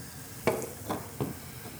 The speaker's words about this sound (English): While they're pouring the drinks, I am personally on the side of cherry, although I really do enjoy cinnamon.